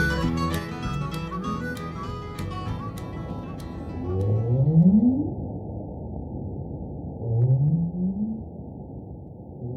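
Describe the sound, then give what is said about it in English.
Northern right whale calls: two low, moaning upsweeps, each rising in pitch over about a second, separated by a few seconds over a steady underwater rumble. Faint clicking is heard at the start. “Northern right whales have reason to sound mournful.”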